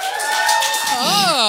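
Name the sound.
audience applause and cheering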